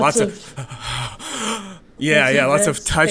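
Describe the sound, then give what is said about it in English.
A voice imitates the film character Julia moaning and breathing heavily as she walks through the house thinking about her time with Frank: drawn-out moaning and gasping breaths, fairly loud, in two long sighing phrases separated by a brief pause. “Lots of face touching, and just, you know, heavy breathing as she's thinking about all the time she had with Frank.”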